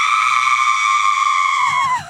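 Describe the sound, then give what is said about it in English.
The Enchantress, a woman, screams in terror as raging magic energy pulls her apart, one long, loud, high-pitched shriek held steady for about two seconds before it wavers and drops away at the end. No other voices. “Screams the Enchantress in terror.”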